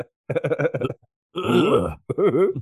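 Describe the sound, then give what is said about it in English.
A voice mimics coughing in a rhythm: a quick run of short, evenly spaced cough-like bursts, then two longer, drawn-out groaning coughs, fairly loud. “Cough in a pattern.”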